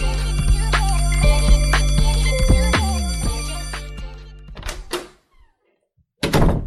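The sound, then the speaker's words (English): A door opens with a drawn-out, creaky tonal groan and shuts with a couple of solid thunks. After a brief silence, a chair scrapes as it is pulled up. “Door open, door closed, chair pulled up.”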